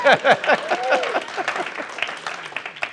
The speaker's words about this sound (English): And we're clapping for Jesus, right?